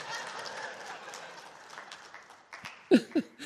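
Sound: audience clapping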